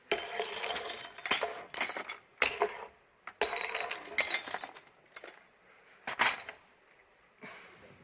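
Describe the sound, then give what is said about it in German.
Glass smashes into shards in a series of loud, crashing bursts, each followed by bright tinkling and scattering pieces, with short quiet gaps between the breaks and no voices. “Ich weiss, es gibt eine Sauerei, aber das ist so mit Scherben, verstehst du?”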